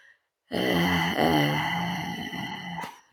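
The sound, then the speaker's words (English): A voice imitates air slowly escaping from a corpse washed up on a seashore, trapped gas coming out as waves disturb the body: one drawn-out, steady, low groaning exhale lasting a few seconds, raspy and moan-like, fairly loud and unbroken by talk. “So when you said before we started pressing record that your sound would be like the slow escape of air, I didn't think that it would be like deceased person air.”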